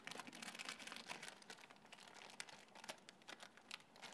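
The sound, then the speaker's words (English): Paper crinkling and tearing as a gift well wrapped in paper and sticky tape is unwrapped, a steady run of rustles, crackles and sharp rips with no talking. “It's my wife who wrapped it up, so it's quite well wrapped.”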